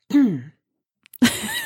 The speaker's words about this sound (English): I have to clear my throat because this is so good.